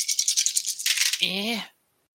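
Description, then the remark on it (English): Dice rattle and clatter in a quick run of bright, rapid clicks for under a second, rolled to hit during a tabletop game, then a person's voice speaks briefly before the sound cuts off. “Now roll it again.”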